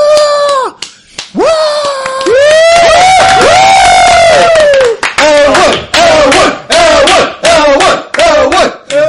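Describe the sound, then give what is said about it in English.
Loud applause with sharp, dense claps, while several voices whoop and cheer in long rising and falling calls that carry across the whole stretch. “And you hear clapping.”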